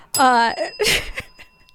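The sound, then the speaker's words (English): A bell rings once and its bright metallic tone hangs on steadily, sustaining beneath a burst of laughter and voices. “I feel like you just need to be here every episode with the bell.”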